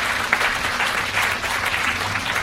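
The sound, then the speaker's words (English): An audience claps steadily and loudly for the sponsor Borders, a dense wash of many hands at once with a fairly even rhythm, with no speech over it. “big claps for Borders.”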